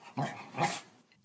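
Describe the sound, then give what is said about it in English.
A dog named Bounder barks on the command "speak": two short, sharp woofs in quick succession with a brief pause between them, and no other voices or sounds around them. “But in the meantime, I couldn't resist a little experiment with my dog Bounder, willingly performed by my sister”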